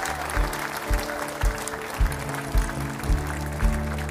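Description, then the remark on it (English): An audience gives the Lord a clap offering in a dense, sustained wash of applause, with a steady low thumping beat roughly twice a second and held musical tones underneath. No one speaks. “Now give the Lord a clap offering.”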